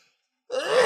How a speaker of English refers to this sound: I'm going to sneeze.